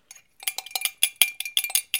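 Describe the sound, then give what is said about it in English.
A metal spoon stirring coffee clinks rapidly and repeatedly against the inside of a ceramic cup, a bright, ringing tapping in an uneven rhythm of about a dozen strikes, with no voices. “Stirring.”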